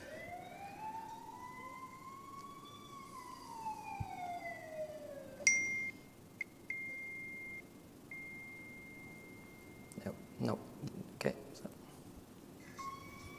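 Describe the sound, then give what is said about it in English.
A car siren wails, sweeping up and down, then settles into a steady high tone broken by sharp clicks and knocks. It sounds thin and fairly quiet, as if played from a small speaker, played into a microphone to test a sound-classification model. “For example, I have a car siren here on my my thing.”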